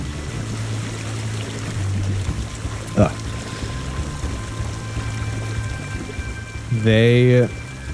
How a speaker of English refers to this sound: Okay, this isn't like this water is just like constantly pouring in.